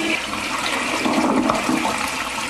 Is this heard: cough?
no